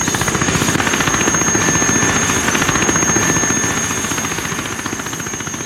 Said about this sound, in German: Der Hubschrauber landete